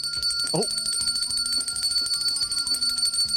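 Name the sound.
bell being rung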